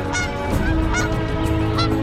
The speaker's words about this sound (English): And there are literally geese everywhere.